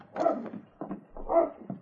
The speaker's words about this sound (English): That dog coming down the street. He looks to be heading straight for us.